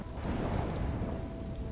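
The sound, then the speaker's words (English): Heavy rain pours down steadily in a thunderstorm, with a deep rumble of thunder rolling underneath. The downpour is loud and constant throughout, and no one speaks. “When a heavy afternoon thunderstorm swept through the area and Ardeth failed to return home”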